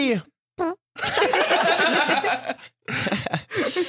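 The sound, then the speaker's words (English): A voice imitates a fart with a long, loud, sputtering raspberry lasting well over a second, framed by short vocal bursts and a few more brief noisy blurts at the end. “I just melted from my fart.”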